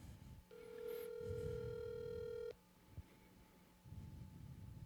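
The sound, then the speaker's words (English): A single long ringback tone, about two seconds of steady electronic ringing heard through a phone line as an outgoing call connects, followed by quiet line hiss and a faint click. “It's ringing.”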